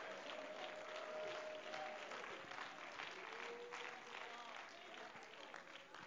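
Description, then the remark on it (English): An audience claps hands in praise to the Lord in sustained, dense applause that stays loud throughout, with scattered voices calling out beneath the clapping. “Oh, somebody clap your hands and let's give praise to the Lord.”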